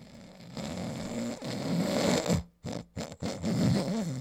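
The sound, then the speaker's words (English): A voice imitates loud, rasping snores, several drawn-out nasal rumbles broken by sharp gasping pauses, with piggish snorting toward the end. “Oh no, he has sleep apnea.”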